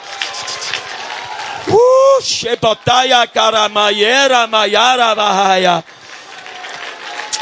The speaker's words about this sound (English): Come on, somebody stomp your feet. Make a Holy Ghost roar. Clap your hands.